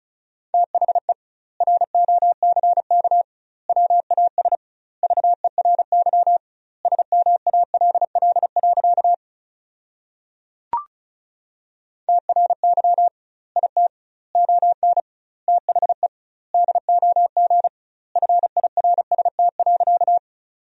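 Fast Morse code at 35 words per minute with doubled word spacing, sending sentences made from the top 400 words, in a single steady mid-pitched tone keyed into quick dots and dashes grouped into words, with one longer pause marked by a brief click partway through.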